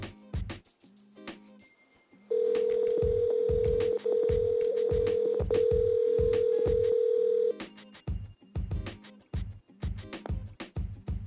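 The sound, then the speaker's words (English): An outgoing phone call rings: a steady electronic tone holds for about five seconds with a couple of tiny breaks, over a rhythmic thumping beat that continues before and after. “We're going to call Ben real quick and get his thoughts on some things real quick. All right, Ben, answer the phone.”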